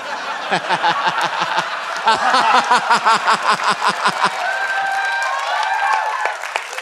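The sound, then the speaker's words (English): An audience claps in a steady, rhythmic beat mixed with laughter and murmuring, the clapping stops partway through and loose crowd laughter carries on to the end. “Don't clap.”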